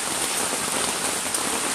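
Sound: heavy rain falling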